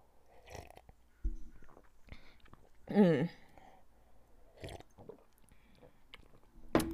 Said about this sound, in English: Hold on, y'all, let me take a sip of this juice.